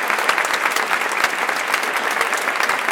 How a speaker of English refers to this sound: Yes, the crowd is going wild. Everybody's super excited about the 100th episode of the Worship Leader Essentials podcast. You can hear them screaming from the back rows.